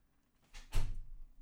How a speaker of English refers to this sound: And the door closes.